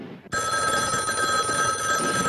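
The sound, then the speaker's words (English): A telephone bell rings loudly and continuously, starting abruptly after a brief moment of low background noise and sustaining a bright, steady metallic trill. “Your phone's ringing.”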